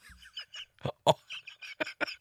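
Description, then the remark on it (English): A sharp, loud sneeze bursts out in the middle, surrounded by a string of short, fainter vocal sounds with a squeaky, honking quality before and after it. “Bless you.”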